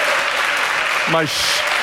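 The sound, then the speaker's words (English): A live audience at a stage show at the Kogod School of Business at American University in Washington, D.C., claps in a steady, dense wash of applause, with a brief voiced whoop rising out of it midway through. “My shameless solicitation for applause there.”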